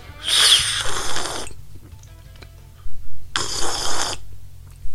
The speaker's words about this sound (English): Oh, excuse me, I'm still having my breakfast here. I'm going to take a sip of my tea now. I'm sorry about this, folks. I really need this.